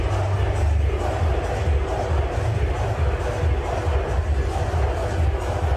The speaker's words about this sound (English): This is the crowd at a Clemson Tide game in South Carolina. And look, listen to this. This is 40,000 people. I guess you can't hear it that well. They're chanting.